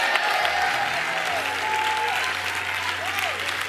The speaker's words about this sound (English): Let's give God a hand clap of praise real quick. Come on, let's make his praise big.